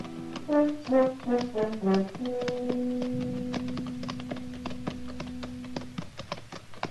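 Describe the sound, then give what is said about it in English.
Horses' hooves clip-clop at a steady walking pace with sharp clear knocks as riders come up the almost deserted main street of the town of Elkader at noon on a hot day, while a brief musical phrase gives way to a long sustained note underneath. “It was noon of the second day when we rode up the almost deserted main street, hot, saddle-weary, hungry.”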